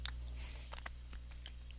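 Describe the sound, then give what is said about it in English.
Quiet, irregular clicks of keys being typed on a keyboard, a quick burst of taps over a steady low background hum, with no talking. “Noob, why are you typing?”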